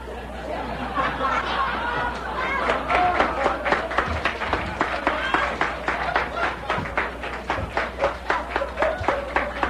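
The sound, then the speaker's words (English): Audience applause: a loud, dense wash of clapping and crowd noise that settles into steady, rhythmic clapping in unison for the second half. “Are you applauding Chuck? Or the fantastic boo-boo I made?”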